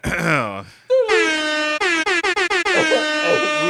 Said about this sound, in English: There you go. Air horns.